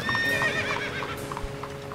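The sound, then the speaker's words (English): Hooves of two horses clip-clop steadily on a hard surface as a horse-drawn carriage awkwardly performs a three-point turn and drives away, with a brief whinny and some wheel and harness noise, and no talking. “Cain nodded and dismissed him, pretending to read the Liverpool Echo on his phone as the driver awkwardly performed a three-point turn with two horses and drove away.”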